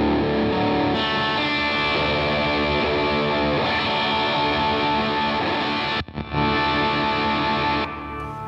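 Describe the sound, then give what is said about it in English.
A heavily distorted electric guitar chord played through a distortion pedal rings out loud and sustained, with a brief break partway through before the fuzzy chord continues steadily to the end. No voices. “the hot kick is another level of distortion”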